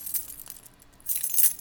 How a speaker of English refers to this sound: They were mourning, dreading, and waiting for the jingling of keys colliding with a watering can, still half full.